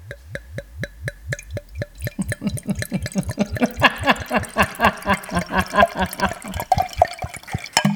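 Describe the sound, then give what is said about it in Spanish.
Liquid glugs rhythmically out of a bottle into a glass, starting as separate gulping plops and quickening into a steady gurgling pour, fairly loud, with no talking. “Vamos para el pouring.”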